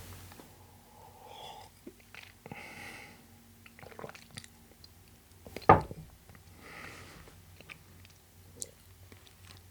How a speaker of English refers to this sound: Well, before I do that, I need a sip of my drink because my mouth is completely parched now.